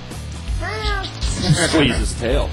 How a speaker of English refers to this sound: Your cat's right there. Let's have them talk. Say something.